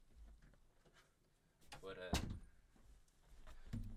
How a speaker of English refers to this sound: I'm going to close the door.